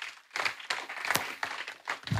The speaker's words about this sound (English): Clap for Jesus.